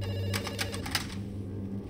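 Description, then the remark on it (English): A telephone rings with an incoming call, the caller ID showing the owner's own cell number, in a quick rattling burst of several strikes, then stops, leaving a low steady hum underneath. No one speaks. “How could I be calling? Uncle Eddie and Aunt Linda had taken my phone, I remembered, bringing the phone up to my ear.”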